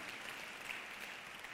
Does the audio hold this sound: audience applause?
yes